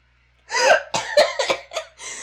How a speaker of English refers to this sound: And now she's cough laughing. She's coughing.